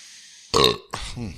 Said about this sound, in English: And so we hope that burp is really crisp for you. Yeah, there's no background noise or anything.